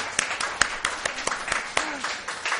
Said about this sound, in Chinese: 在今天的里面，我们做爸爸的应该挨了这么久，值得弟兄姐妹给点鼓掌，我们鼓励一下我们的爸爸。